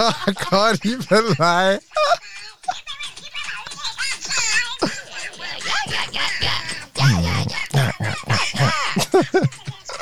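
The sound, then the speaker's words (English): A voice imitates a duck's quack in a quick burst of nasal, wobbling calls, followed by noisy chatter and laughter from several people. “You said quack.”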